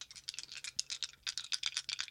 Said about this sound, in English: Oh, that sounds good. A little dice ASMR for your Wednesday morning.